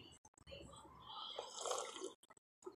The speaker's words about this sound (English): And me slurping my coffee.